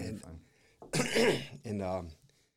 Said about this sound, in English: And I'm just going to put this out there that, you know, that this COVID that I had is, I'm going to start clearing my throat.